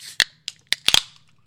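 Three White Claw drink cans being cracked open: a short hiss, then a handful of sharp metallic snaps and pops in quick, uneven succession, with no voices.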